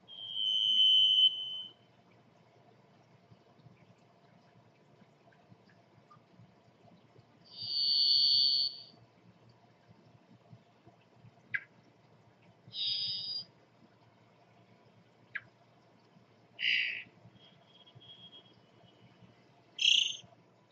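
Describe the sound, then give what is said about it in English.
A varied thrush sings five long, buzzy, electric-sounding whistles, each on a different high pitch and separated by long pauses, with faint clicks between and a low steady background rumble. “a songbird known for its long minor key whistles, or blah blah blah.”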